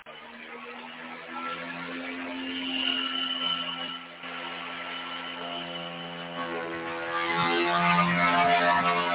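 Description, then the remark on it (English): Helicopter rotor blades whirring in a steady, buzzing drone with a rich, layered tone, dipping briefly midway before growing slightly louder and brighter toward the end, inside JPL's 25-foot-diameter vacuum tank filled with CO2 at 1/100th of Earth's atmospheric pressure. No voices. “Hear the whir of the blades.”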